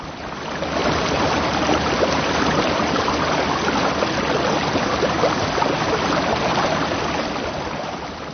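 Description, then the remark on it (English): A swiftly running river rushes under a bridge in a steady, unbroken wash of churning water, loud, with no pauses or voices throughout. “He wanted to shout, but the sounds he heard were just those of the river running swiftly under the bridge.”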